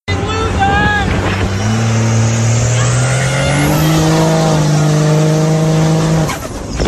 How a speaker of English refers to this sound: Here's a Trump supporter driving past one Biden person on a street corner with a Biden sign with their diesel truck, and it was beautiful.